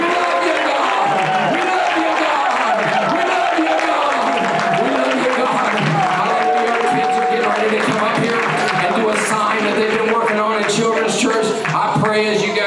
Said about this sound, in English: If you believe God is going to use your children this year in school, clap your hands nice, strong, and loud, and lift up your voice with the voice of triumph.